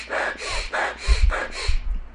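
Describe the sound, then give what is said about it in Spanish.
A voice imitates a rabbi breathing very hard on Yom Kippur: about five loud, rhythmic breath bursts in quick succession, each a harsh airy rush, with no talking. “Dicen que había un jajam que nada más estaba así respirando muy fuerte, muy fuerte.”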